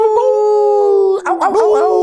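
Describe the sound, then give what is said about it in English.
A person imitates a wolf howl, like Teen Wolf, holding one long, loud, steady note before it breaks into a few quick, wavering yips at the end. “He's turned into Teen Wolf.”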